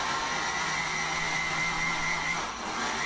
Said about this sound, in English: Blender sound effects.